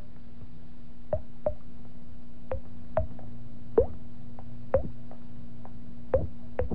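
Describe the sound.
A voice imitates dripping water with a series of wet mouth pops, about a dozen drops at irregular intervals, fairly soft over a low steady hum.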